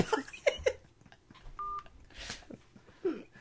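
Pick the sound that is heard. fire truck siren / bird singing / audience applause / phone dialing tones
phone dialing tones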